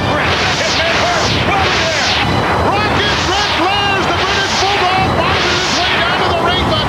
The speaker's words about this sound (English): And then out of nowhere, there's like Atari laser beam. Like those noises, like Atari laser beam noises, like sync to the fireworks.